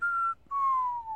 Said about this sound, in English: So if bird noises bother you, might be an idea to turn this one off, skip it, but... I just realized that bird, I think it's an owl, sounds like...